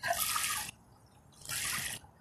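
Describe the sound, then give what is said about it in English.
A stork splashes in water twice, each burst a bright, hissing wash lasting under a second with a short quiet pause between, moderately loud, with no voices. “Boy, when it splashes the water, it's funny.”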